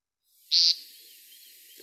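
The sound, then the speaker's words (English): A single sharp, nasal buzzy peent call of a male American woodcock, the call that starts its display, rings out loudly for a split second, then fades into a faint hiss of ambient background with no voices present. “Track 14, American Woodcock painting an aerial display.”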